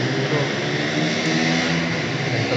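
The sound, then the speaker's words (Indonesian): A loud, steady engine roar fills the whole stretch, dense and sustained with a throaty exhaust character, like vehicles revving hard without pause, from engine exhausts at the Sentul race circuit. “Sorry guys, ini lagi di Sentul. Jadi ya sorry banget kalau ada suara-suara knalpot.”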